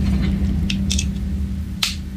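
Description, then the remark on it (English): A few sharp, bright plastic clicks sound over a steady low hum, two quick ones close together and then a single louder snap, with no talking. Sounds like an iPhone charger clicking into place. “It is the sound of an iPhone charger clicking into place.”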